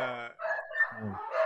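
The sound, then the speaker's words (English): Dogs bark and yowl in a quick run of drawn-out, whining calls, loud, with several overlapping voices and no talking. “Bro, these dogs. Make them shut up.”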